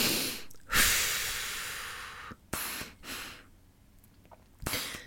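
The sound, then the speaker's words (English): Loud deliberate breathing with no talking: a long, forceful, airy exhale trails off over a couple of seconds, followed by a few shorter, sharp breaths with pauses between. “Breathing sometimes helps.”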